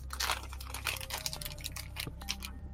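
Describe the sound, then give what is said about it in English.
Crinkling and rustling of packaging as fancy dice are taken out, a steady run of crisp plastic crackles and small clicks lasting a few seconds, with no one speaking. “Get some fancy dice out here.”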